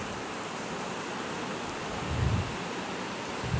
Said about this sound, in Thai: ฝนกำลังตกฝนเขาบอกว่าอะไรฝนน่ะ